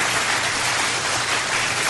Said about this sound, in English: Oh, that's applause.